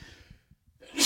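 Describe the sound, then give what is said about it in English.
A single loud sneeze bursts out, preceded by a soft breathy inhale and a brief pause, with no talking around it. “Gesundheit”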